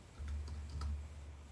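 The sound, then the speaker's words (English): A brief burst of typing on a computer keyboard, several quick, light key clicks over a low background hum, with no voices. “Typing it in.”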